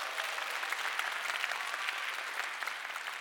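An audience claps steadily, a dense patter of many hands with crisp high-pitched slaps at a fairly even level throughout, with no voices over it.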